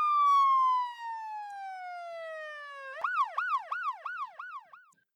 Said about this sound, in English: You never get used to it, do you? That noise. But it's a trade-off, I suppose. I escape the clapping at home and get the sirens here. Eventually, they're just like white noise.